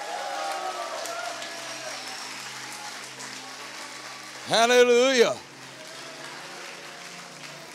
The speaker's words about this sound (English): Give the Lord one more mighty hand clap.